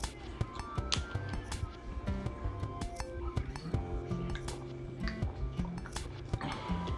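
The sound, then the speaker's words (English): Glasses and water being set down: scattered sharp clinks and taps, some ringing briefly, with soft sloshing and handling noise over a low steady hum. “Excuse me, bringing some water.”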